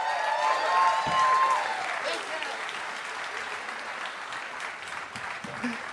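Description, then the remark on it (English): An audience claps steadily for comedian Marc Maron, a dense, sustained wash of applause that stays loud throughout, with a few faint cheers and a brief whistle-like tone near the start. “Hey, can we have a round of applause for the great Marc Maron?”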